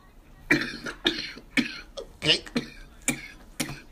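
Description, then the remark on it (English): A repeated string of harsh coughs and throat clearing, roughly seven bursts coming in a steady rhythm about half a second apart, with no talking in between. “Let me clear my throat.”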